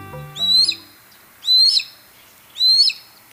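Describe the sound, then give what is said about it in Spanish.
A Harris's hawk gives three loud, harsh, slightly rising calls spaced about a second apart, with a brief low tone fading out at the very start and no talking. “Si bien la mayoría de las aves rapaces son solitarias, el aguililla rojinegra vive y caza en grupos de entre 2 y 6 individuos.”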